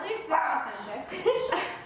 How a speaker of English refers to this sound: The dog. Those are the two dogs.